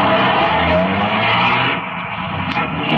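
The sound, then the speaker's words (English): A car engine roars as the vehicle pulls away, a loud, steady rumble with a hint of tire squeal, dipping briefly before surging again. No voices. “By 2:35, the other half pulled out, and a few minutes later, Ben and I followed.”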